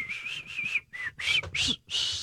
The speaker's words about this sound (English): give me a whistle here